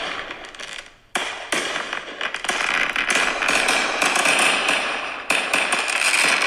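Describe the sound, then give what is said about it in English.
Fireworks crackle in a dense, rapid, continuous barrage, loud, marking the kickoff of the NFL season, with a brief lull near the start before the popping surges back and carries on without any talking. “That's right, the fireworks were going off.”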